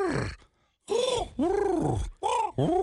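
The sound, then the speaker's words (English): A person imitates a raven with four deep, guttural croaks, made by rolling the R's in the throat, each a rough, gravelly burst with a short pause between, the first separated by a longer gap. No words are spoken. “But then you have to go to the raven, which is a little deeper.”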